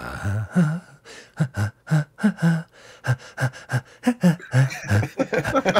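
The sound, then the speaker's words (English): Loud heavy breathing in quick, rhythmic pants and gasps, each breath voiced and ragged, continuing steadily for several seconds with no talking. “You weren't hearing things. Heavy breathing.”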